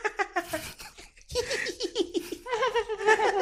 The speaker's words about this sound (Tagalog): Pero after nung 30 minutes na yon, siguro mga around 11:30 or mga magte-12 na rin nung time na yon, may narinig ako na parang malapit lang talaga sa akin na halos nasa likuran ko lang. Yung tawanan, yung hagik-gik talaga na parang mga bata.